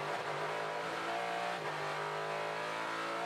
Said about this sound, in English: V8 screaming away, 90 seconds still to go.